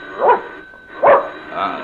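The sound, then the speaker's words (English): A dog named Buster barks three times in a loose, uneven rhythm, the sharp woofs moderately loud, with a faint background hum and no one speaking. “That dog bite?”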